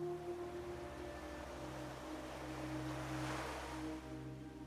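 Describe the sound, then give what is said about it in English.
Gentle waves lap against the shore of a beach with a soft, steady hiss that swells briefly near the end, backed by a constant low droning hum. No one speaks. “Maybe you can hear the waves lapping against the shore, and some seabirds flying overhead.”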